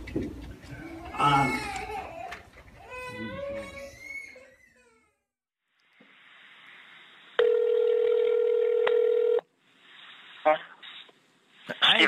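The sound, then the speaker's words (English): A telephone line tone sounds steadily for about two seconds after some wavering vocal sounds and a quiet pause, with a few faint clicks around it, as a number is dialed on a phone to call a man. “Before church was even out that day, I had called that man on the phone.”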